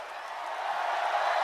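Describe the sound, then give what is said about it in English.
A crowd cheers and roars wildly after a mic drop, a dense, steady wash of many voices that swells slightly louder over its short span, with no single voice standing out. “And you could just hear the crowd going crazy.”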